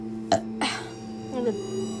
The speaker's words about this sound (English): I'm gonna burp.